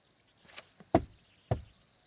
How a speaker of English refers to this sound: Kol Doidi Doifek. I hear the sounds of HaKadosh Baruch Hu, who's called Doidi, is knocking on the door.